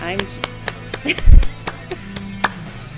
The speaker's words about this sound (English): Wow, I got applause. Well, it's live. We're at the speaking conference.